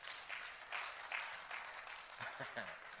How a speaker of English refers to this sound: Wow. Wonderful. Clap for yourself.